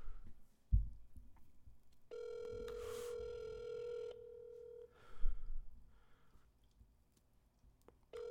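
A phone call's ringing tone: one steady, mid-pitched electronic tone held for about three seconds, preceded by a thump and faint handling noise, with soft rustles afterward.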